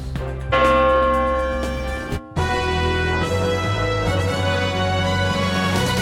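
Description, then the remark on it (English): A loud, ringing bell-bong sound effect with rich sustained harmonics, a first strike followed by a brief gap and a second resonant bong that hangs in the air, with no talking. “You were too quick for the bongs there”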